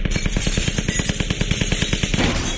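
A long, steady burst of rapid automatic gunfire, around nine shots a second in an even rattling rhythm, loud and sharp before it cuts off just short of the end.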